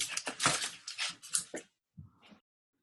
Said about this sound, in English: I'm just moving my things because I spilled my water.